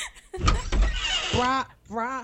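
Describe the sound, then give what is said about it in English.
A voice imitates a pantry door creaking open, drawing out a wavering, groaning creak, then giving a second, shorter creak after a brief pause. “Door creak. Door creak.”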